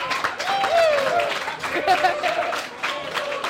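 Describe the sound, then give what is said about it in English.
A crowd of fans at the Waypoint Cafe cheers and yells excitedly while watching a video game match played by players at computers in a Los Angeles studio, as NYXL take the point; whoops, high shouts and scattered clapping blend into a loud, continuous roar of voices. “the fans at the Waypoint Cafe don't care.”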